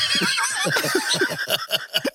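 A horse lets out a loud, close whinny, a shrill wavering neigh that breaks into rapid fluttering pulses as it trails off over about two seconds.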